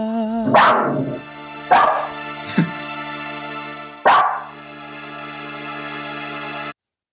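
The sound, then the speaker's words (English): A dog barks three times on a song recording, loud, with uneven gaps between barks and a short yip in between, all over a steady sustained musical backing that cuts off abruptly at the end; the dog was a late overdub on the track. “I don't remember the dog on the track.”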